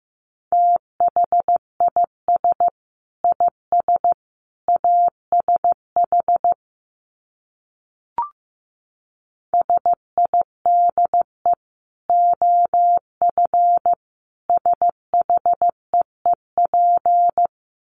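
Morse code sent at 15 words per minute: a single steady mid-pitched tone keyed into short and long beeps, in two runs split by a pause with one brief click. No voices.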